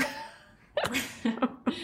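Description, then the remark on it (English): A sharp sneeze bursts out after a quiet stretch, followed by a few quicker explosive bursts in rapid succession. No one speaks. “God bless you.”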